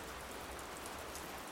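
Steady rain patters on a surface, a dense, continuous hiss with faint scattered droplet ticks, fairly quiet and even throughout with no voices.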